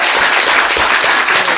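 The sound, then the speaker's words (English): An audience in Beijing applauds New York Times foreign correspondent Jane Perlez, a dense, continuous wash of many hands clapping at an even, fairly loud level, with no voices standing out. “Let us give a huge round of applause to Jane Perlez.”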